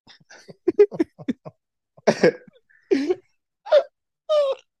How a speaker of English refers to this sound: Oh, what the fuck was that? Oh my god. Was that me? No, that was him. What the hell was that? I burped a little bit. Excuse me.